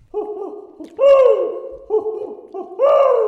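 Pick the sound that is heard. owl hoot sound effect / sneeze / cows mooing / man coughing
owl hoot sound effect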